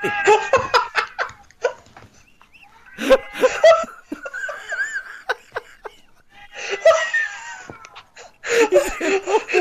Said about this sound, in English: We're trying to talk about the most epic moment in Lost history, cats. How many are there? They're multiplying.